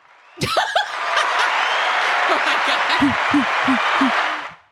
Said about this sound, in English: I hope that comes through because sometimes it doesn't, y'all. It was the cheering.